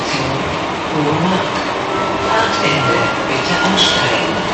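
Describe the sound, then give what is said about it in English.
A U-Bahn train rumbles steadily along the double-track line from Oberursel Bahnhof toward Kupferhammer, nearing the end of the line, a loud, continuous roar with rattling wheels and faint high squeals, heard from on board with no clear speech. “So here we're getting there, and getting there to the end of the line.”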